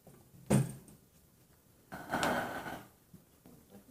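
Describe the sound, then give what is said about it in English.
A sharp wooden knock, then a second of scraping as a chair brought from the back is slid across the floor and set down, with a few faint bumps afterward and no talking. “can I get you to bring me that chair from the back quickly, please?”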